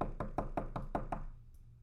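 Seven quick, evenly spaced knocks on a wooden door, fairly loud, followed by a brief quiet tail with a faint tap near the end. No voices.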